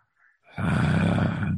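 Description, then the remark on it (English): A person voices a creature's heavy chest breathing: one long, loud, rumbling exhale that swells in suddenly after a faint intake and holds steady for about a second. “There's a breathing from its chest as”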